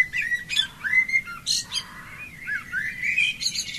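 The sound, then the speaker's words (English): A dawn chorus of birds chirping and singing continuously, several overlapping calls with quick trills and whistled notes, clear over a low rumbling background, with no voices. “We used to call it the Dawn Chorus. Thousands of birds, hundreds of birds.”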